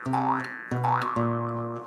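A jew's harp twangs over a steady low drone, plucked three times, its bright overtones sweeping up and down in a wah-like boing. No voices are heard.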